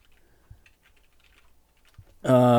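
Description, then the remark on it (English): Soft, irregular tapping of keys on a computer keyboard, faint and scattered with a couple of dull thumps, until a sudden loud, steady tonal sound takes over at the very end. “Let's move the microphone here so I can get a little closer to the keyboard here.”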